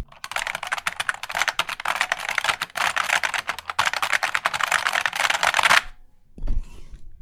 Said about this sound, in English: Yeah, but listen, keyboard nerds who have an overlap with music skills, if you can make a rave song composed entirely out of clicky keyboard sounds and send it, that would make me very happy.